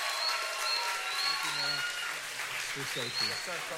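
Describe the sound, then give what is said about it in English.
A church audience claps as a "clap offering" to Jesus, a dense, steady wash of applause that holds for several seconds, while a voice speaks over it in short bursts. “Can we give Jesus the biggest round of applause right now?”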